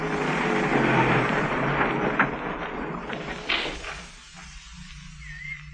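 Steady rumble of a car driving, with a couple of sharp clunks like a car door shutting, after which the noise drops to a quieter low hum.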